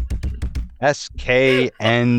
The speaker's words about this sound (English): I'm typing it out right now. Are you? It sounds like you're just hitting the keyboard randomly and saying that you're typing it.